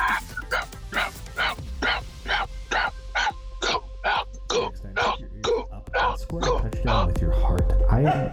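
dog barking

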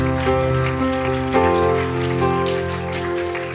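audience clapping hands

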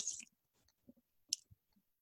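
sipping beer

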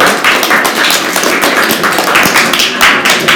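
students applauding

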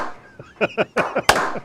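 slow clap

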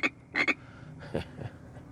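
frog croaking

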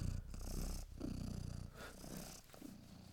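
cat purring

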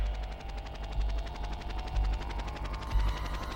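helicopter sound effect

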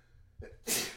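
sneeze

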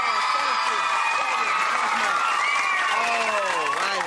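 audience clapping

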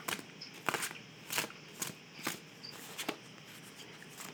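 shuffling tarot cards

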